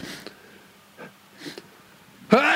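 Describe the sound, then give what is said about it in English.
A few quiet sniffs and short breaths, then a single sudden, loud, explosive sneeze bursts out at the end, with no talking. “So every time I sneeze in this podcast, I'm gonna thank him.”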